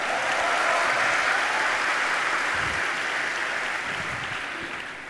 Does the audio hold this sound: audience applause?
yes